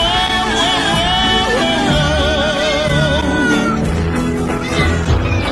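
A cat sound effect played for the Stat Cat segment: loud, overlapping cat meows and drawn-out yowls pile up for several seconds, wavering in pitch over a busy, clattering background, with no talking.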